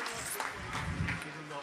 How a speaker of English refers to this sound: Excellent. Round of applause for these guys.